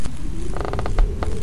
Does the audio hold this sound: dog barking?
no